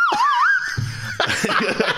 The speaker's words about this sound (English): You think the noises you make are annoying? I'm here with a slide whistle.